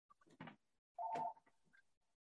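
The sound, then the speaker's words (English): A single short burst of an office phone ringing, a warbling electronic trill, faint and alone, with a few soft scattered noises before and after it. “Excuse me, the phone is ringing in the office, you know, pardon me.”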